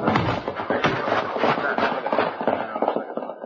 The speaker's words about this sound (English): Then suddenly the horse was almost on top of us, and as the rider could make us out in the dark, he swerved, and before raking his horse again, dropped something large and heavy at our feet.